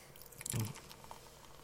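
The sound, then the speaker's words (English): Beer glugs briefly into a glass, a soft splashing gurgle that swells for a moment and then trails off into quiet fizzing, with no one talking. The beer is very clear with a light golden color. “And the pour, of which I do.”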